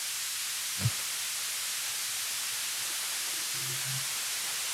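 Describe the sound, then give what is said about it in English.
Steady, hissing static fills the line from start to finish, with a brief low thump early on and a short low hum near the end, and no one speaking. “Car, you hearing that static?”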